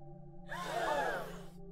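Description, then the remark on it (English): A single sharp, breathy gasp, a quick audible inhale with a slight voiced edge, lasting about a second over a faint steady background hum. “So a gasp is a quick breath in through the mouth, usually bringing air just into the higher lungs and the chest.”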